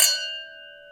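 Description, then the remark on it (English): A single bright clink of glasses touching in a toast, with a clear ringing tone that lingers and slowly fades over about a second. No talking. “On that note, cheers.”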